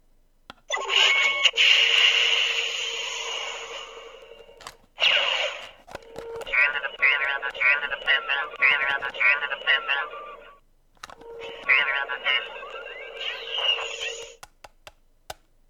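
A toy probe droid emits bursts of electronic noise: a harsh hissing static crackle, then a run of rapid warbling, chirping beeps, a pause, and another chattering electronic burst.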